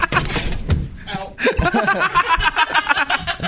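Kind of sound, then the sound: household object, door being opened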